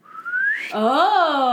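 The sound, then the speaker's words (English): A person imitates a whistling swoosh: a thin whistle rising in pitch, then a loud, close, voiced swoop that arcs up and falls away, lasting under two seconds. “That being was depicted as an ape-like creature who carries a large stone as a weapon and makes a whistling swoosh sound.”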